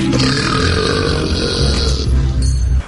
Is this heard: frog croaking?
no